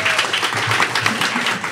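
An audience applauds steadily, a dense wash of many hands clapping at an even, sustained loudness, with faint voices and cheers mixed underneath, welcoming a guest, an astronomer and author, coming out.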